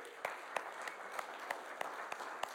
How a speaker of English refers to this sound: give Ike McClendon a big round of applause